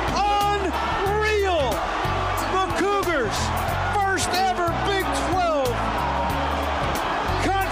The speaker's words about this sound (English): The crowd storms the field and the Cougars win it. Unbelievable.